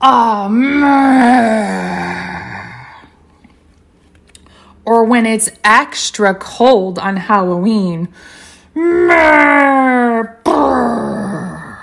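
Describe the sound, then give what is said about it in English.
Children imitating the monster Crankenstein let out long, rough monster growls and groaning wails in loud sustained bursts at the start and end, with a voice speaking briefly in between. “Ooh, some good growls in there.”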